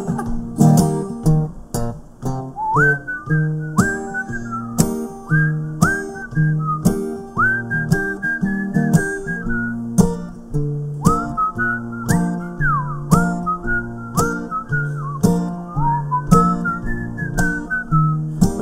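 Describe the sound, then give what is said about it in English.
A person whistles a clear, bright melody for almost twenty seconds, with sustained notes and sliding pitch bends, over a steady, rhythmic musical backing. Nobody speaks. “So it's better, best just to go with a whistle solo.”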